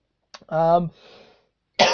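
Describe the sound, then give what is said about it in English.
A throaty cough with a strained, voiced rasp fades into a breathy exhale, then another sharp cough bursts out after a brief pause. “why do I keep coughing?”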